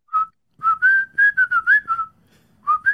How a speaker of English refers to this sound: whistling that tune, that same old Fallout like tune as I head towards the door